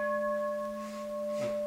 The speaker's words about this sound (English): And when I ring a bell, I think you've already heard it.